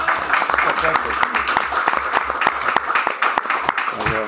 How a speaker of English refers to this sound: No, absolutely. I think it's probably worth a round of applause.